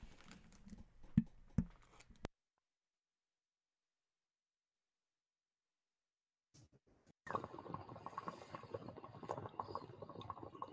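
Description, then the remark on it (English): A water pipe (bong) in a cannabis shop bubbles in a dense, steady gurgle of rapid little pops, fairly loud, starting after a few seconds of silence that follows some brief clicks and rustling. “Oh, I can hear that bong. Sorry, water pipe.”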